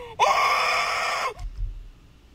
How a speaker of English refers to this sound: Screaming is a sign of a not stable person, if you know anything about human psychology.